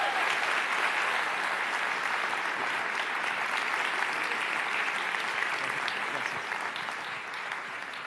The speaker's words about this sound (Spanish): Bueno, así que quiero pedirles un favor, si pueden recibir con un caluroso y fuerte aplauso a Agustín Laje esta mañana en Presencia Viva.